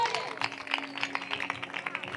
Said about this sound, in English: Are you clapping for the Holy Ghost?